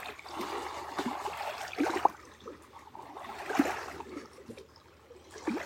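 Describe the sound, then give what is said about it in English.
Gentle lake water laps and splashes against rocks, a steady watery trickle with soft surges every couple of seconds, fairly quiet, with no voices. “Let's sing the Heart Sutra in harmony with the waves and the water, the rocks.”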